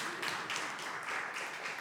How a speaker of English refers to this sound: Amen. You can clap. That's okay.